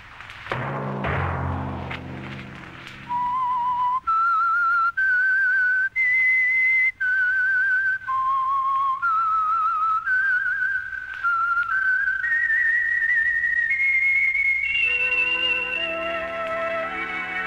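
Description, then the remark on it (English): A brief low musical swell gives way to the solo whistled theme melody of a radio programme, clear, with sustained notes stepping up and down in a slow, eerie tune that climbs higher toward the end. “Whistle be your signal for the Signal Oil program, The Whistler, each Sunday night at this same time”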